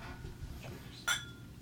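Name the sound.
glasses clinking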